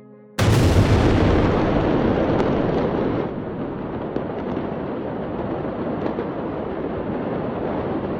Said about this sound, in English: At 6.07 p.m., roughly 20 minutes after the fire was first reported, a huge explosion of pyrotechnics went up in a ball of brightly sparkled fire.